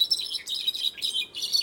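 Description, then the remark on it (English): A brown-backed solitaire sings a bright, high, tumbling song of rapid chirps and whistles, flowing in short bursts with brief pauses, clear with no voices. “But for brown-backed solitaires, their song also puts them in danger.”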